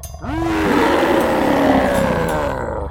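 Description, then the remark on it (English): A lion's deep, rumbling roar rises after a brief pause and holds loud for nearly three seconds before trailing off, with no voices. “it's his mighty call. It's Aslan.”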